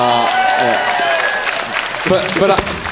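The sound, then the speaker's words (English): A burst of audience applause with scattered claps and some cheering, steady and fairly loud across the moment, with voices calling out over it, as the audience applauds a contestant conceding a point. “They applauded louder to your conceding.”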